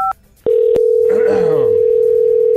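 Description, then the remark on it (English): A short keypad beep as an outgoing phone call is placed, then a steady, loud ringing tone droning on through the line as a voice talks briefly over it. “Who is it calling?”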